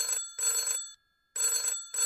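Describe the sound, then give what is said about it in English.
An old-fashioned telephone bell rings in two bright, metallic bursts with a short pause between, loud, with no voices. “A one ringy dingy, a two ringy dingy.”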